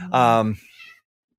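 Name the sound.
angry cat meowing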